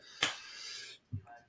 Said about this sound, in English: That was a good burp.